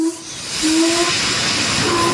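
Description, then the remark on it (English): A steam rocket engine roars as the rocket takes off, going too fast, with a loud, steady hissing rush that swells after a moment, thin whistle-like tones flickering through it. No voices are heard. “The engine's roaring like Darwin's mother! We're going too fast!”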